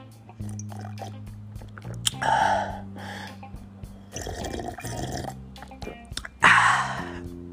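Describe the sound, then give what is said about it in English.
Sipping and slurping of coconut water, with two louder gulping bursts among quieter mouth sounds, over a steady low droning background. “Let me sip on a little bit of this coconut water.”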